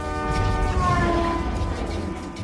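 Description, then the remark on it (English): A car alarm's horn blares continuously in a loud, buzzy chord as the car is thrown through the air and moves farther away, its pitch bending slightly downward partway through in a Doppler slide, with a low rumble underneath and no talking. “The sound of the car horn getting farther and farther away. That's great Doppler effect.”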